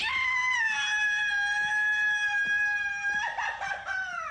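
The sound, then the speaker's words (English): Actor Ryan Gosling, in the 2016 film The Nice Guys, lets out a long, shrill, high-pitched scream that holds a steady tone for about three seconds, then breaks into ragged, sputtering yelps before trailing off. “I love this movie so much, seen it so many times, but you just got to love that Ryan Gosling scream.”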